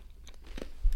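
Crisp crunching of a crispy coconut cookie being bitten and chewed, with a few brittle snaps and a soft low thump near the end, no talking.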